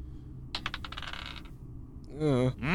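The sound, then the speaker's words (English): A quick rattling clatter of dice tumbling across a hard tabletop as someone rolls for an athletics check, lasting about a second, followed by a brief pause and then someone starting to speak. “Roll me a strength check. Okay. Or sorry, an athletics check.”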